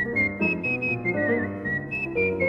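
A woman whistles a bright, clear melody, the pitch stepping up and down over a full instrumental accompaniment, close and steady throughout.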